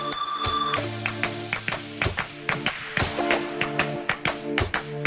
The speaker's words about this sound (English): If you can get your hands above your head, and you can try that clapping rhythm with me. Here we go.